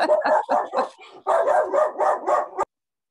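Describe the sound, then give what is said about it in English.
A dog barks loudly in a quick, steady string of about ten sharp barks, split into two runs by a brief pause, then stops abruptly. No one talks over it. “He must have seen a cat.”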